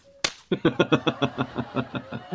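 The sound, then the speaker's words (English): A sharp, loud slap in the face cracks out after a short tone, followed by a fast, steady run of about a dozen repeated smacking hits that gradually soften. “You know, if I were Dr. Albright, I'd slap you in the face.”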